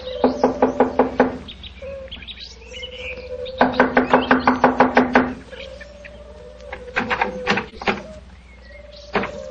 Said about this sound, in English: Here we are. I'll knock on the door.